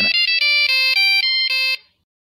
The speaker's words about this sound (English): Later that night, they hear it again, the horrifying sound of the sat phone, but this time it's not in the dinosaur. It's in a massive pile of spinal poop.